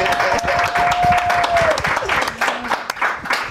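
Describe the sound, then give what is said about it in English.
A live studio audience breaks into loud, sustained applause for guests Nice Peter and Epic Lloyd, dense clapping filling the whole stretch, with a whistle rising briefly above the crowd noise. “Oh, hot crowd for you guys.”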